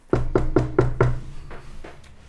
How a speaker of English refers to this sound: A moment later, you guys hear a knock at the front door.